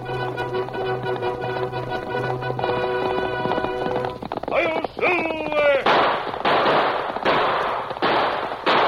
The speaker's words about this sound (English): Fiery horse with the speed of light, a cloud of dust, and a hearty high of silver, the Lone Ranger.